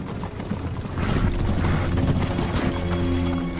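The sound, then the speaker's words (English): Horse hooves clip-clop in a steady, rhythmic patter, moderately loud, growing fuller after the first second and continuing to the end with no one talking. “We underestimate how many animals are in this. Like, how many horses?”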